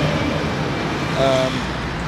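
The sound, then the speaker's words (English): A heavy waste recycling lorry rumbles past going round a bend on Grove Road in Hitchin, its steady engine noise swelling briefly with a tonal whine midway, over a constant roar of roadway noise. “Waste recycling lorry going round the bend.”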